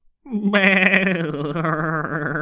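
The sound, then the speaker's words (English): A single long bleat from a shivering sheep, loud, with a wavering, quavering tone that holds for about two seconds before tapering off. “The sheep stood there shivering.”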